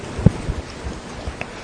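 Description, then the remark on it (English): Steady, heavy rain hisses evenly throughout, with a few short, deep thumps of thunder rumbling low underneath. No voices are heard. “And then Eliyahu said to Ahav, "Get up, eat, drink, because I hear the sound of heavy rain."”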